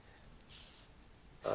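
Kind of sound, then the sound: human body sound, fart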